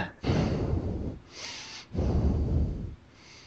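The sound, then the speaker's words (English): A man's normal heavy breathing right up against a microphone: two loud, rumbling, distorted exhales separated by a sharper, hissier inhale, with no talking. “someone like either jerking right now into the mic or standing in front of a fan”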